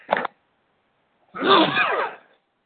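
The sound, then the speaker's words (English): One loud sneeze during a live reading, with a brief sharp sound just before it, followed by a pause and then a drawn-out, explosive burst that trails off into silence. “I'm going to sneeze.”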